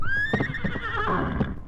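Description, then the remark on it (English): A golden horse lets out a single loud whinny, its shrill voice gliding and wavering before fading, with low rumbling noise underneath. “Him, devil horse! No man can ride, Major, unless I tell him it's all right.”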